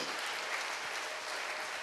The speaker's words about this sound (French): Applaudissons pour le Seigneur. Let us clap for the Lord.